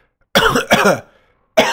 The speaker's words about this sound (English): Sorry to cough into the mic. I know it bothers some people. They're into the sinus infection ASMR stuff.